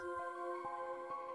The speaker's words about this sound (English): I mean, how loud is it? It's a signaling bell, and it can be heard for 300 feet. Yeah, it is. It is loud.